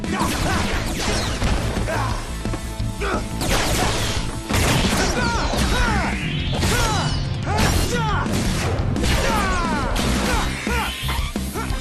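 Loud, continuous screeching sound effects, with shrill pitch sweeps rising and falling over a dense bed of crashing, smashing, mechanical noise, sustained for the whole stretch with no voices.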